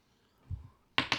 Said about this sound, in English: What? I dropped my dice. I roll again. I got 5, so.